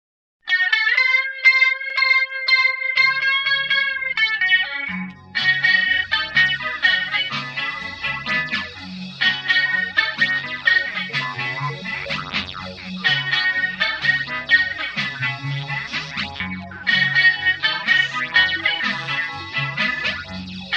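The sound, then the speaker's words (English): A music track imported into an editing program's library plays on its own in a test movie: a bright, sustained synth-like melody opens, then after about five seconds a driving beat with bass and distorted tones joins, staying loud and steady. “To summarize, to add music, first import the audio into the library.”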